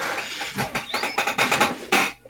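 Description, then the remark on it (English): A chair creaks and squeaks as someone shifts their weight, with a thin rising squeal partway through and several rough, scraping creaks over about two seconds, no talking. “Good creaky chair. Why does all my chairs creak?”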